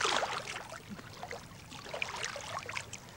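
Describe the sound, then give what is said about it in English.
Continuous splashing and sloshing of water as someone swims in warm water near hot lava, with irregular bursts of churning and dribbling droplets throughout, no voices. “Swimming along here, the water's quite warm.”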